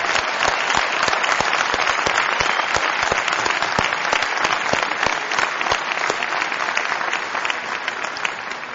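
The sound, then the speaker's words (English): A crowd applauds steadily in recognition of Ohio Board of Regents Chancellor Eric Fingerhut and retired U.S. Senator John Glenn, a dense wash of many hands clapping with sharp individual claps popping through, holding a constant loud level for the whole stretch before easing slightly at the end. “And again, please hold your applause until all are introduced.”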